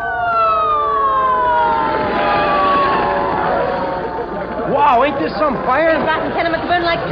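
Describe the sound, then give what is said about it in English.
Many fire engine sirens wail loudly together at a fire with flames, their long tones sliding downward, then give way to rapid rising and falling whoops as indistinct voices clamor underneath. “Boy, did you ever see so many fire engines?”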